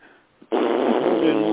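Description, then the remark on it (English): After a faint lead-in, a voice abruptly launches into a loud, sustained, buzzy honk for about a second, imitating someone blowing their nose hard. The blast is steady and raspy. “Do you make a lot of noise when you blow your nose?”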